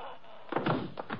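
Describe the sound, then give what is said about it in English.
A door is shut with a solid slam partway through, followed by a few quieter knocks and rattles as it settles, with no voices. “Shut the door”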